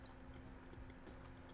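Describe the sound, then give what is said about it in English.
Soft, wet chewing with the mouth open, quiet, a steady run of small squishy smacks and clicks with no talking. “You can't chew with your mouth open.”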